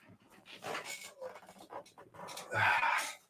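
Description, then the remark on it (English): A dog named Norman pants in quick, breathy bursts, with shuffling and rustling as it moves about. The sound grows louder and busier near the end. “hold on, I got to grab my dog.”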